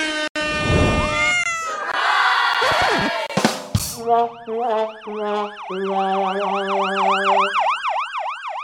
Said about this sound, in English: The ambulance one lasts a long time.